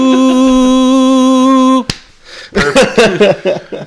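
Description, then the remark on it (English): A held, sung tone breaks off with a single sharp, loud slap of a person's hand against their own skin, followed after a short pause by a person talking. “I just slapped myself out of it.”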